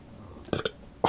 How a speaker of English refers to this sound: Ew, you burped? Yeah, I burped.